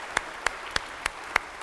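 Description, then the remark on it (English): Five sharp, evenly spaced hand claps at a slow, steady pace, clear over a quiet background, like sparse applause rather than a full crowd, celebrating a couple's 50th wedding anniversary. “That is worthy of a clap.”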